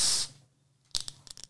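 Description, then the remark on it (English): A beer container is cracked open with a short, bright burst of hiss that fades within a quarter second, followed by a pause and then a cluster of quick crackling clicks. “I'm going to crack this bad boy open.”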